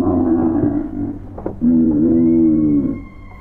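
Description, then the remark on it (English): A huge, vaguely bovine creature with two enormous horns and six eyes screams in two long, loud bellowing cries, the first wavering and the second stronger and rising slightly before tailing off. No one speaks. “Then the thing turned its gaze to me, and it screamed.”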